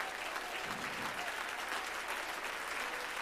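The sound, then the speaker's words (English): An audience bursts into steady, sustained applause, many hands clapping in a dense, even wash of sound that holds at full loudness throughout, with no voices standing out. “Somebody clap if you believe that.”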